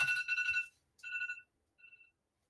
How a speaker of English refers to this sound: Sorry, that's my prayer alarm.